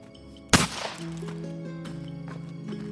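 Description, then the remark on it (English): A single sharp gunshot cracks out near the start and fades quickly, followed by a steady, sustained musical drone that continues to the end. “She heard voices arguing, and then, without warning, the sound of a gunshot rang through the air.”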